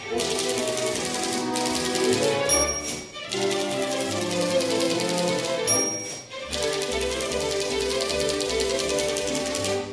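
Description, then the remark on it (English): Rapid, steady typing on an electric typewriter over a dense musical backing, with brief bell-like dings and short pauses around the third and sixth seconds before the clacking resumes. “Millennials, that's a thing called a typewriter, all right?”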